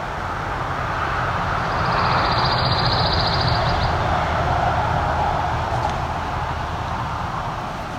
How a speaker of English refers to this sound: We can get a few seconds of quiet to hear this pine warbler. Mostly yellow bird. Sticks to the tops of these pines.